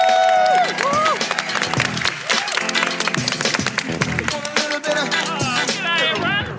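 An audience claps steadily in a dense, loud burst of applause at the close of a special Climate Week edition of a show, with whoops and cheering voices rising above it throughout the whole stretch.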